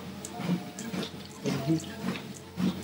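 Water is poured into a glass with a steady running splash, broken by soft low gulps at an uneven rhythm as someone drinks it. No one speaks.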